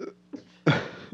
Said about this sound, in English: Infinite sneezing.